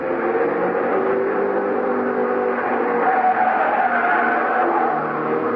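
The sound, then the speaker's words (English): Test cars roar loudly and continuously as they thunder past on the track at the Allied Motors testing grounds, a dense, steady engine drone with shifting whine that never fades away, with no voices. “They were still testing cars, but the people watching the test winced as the cars thundered by, just as if they expected the autos to fall apart any second.”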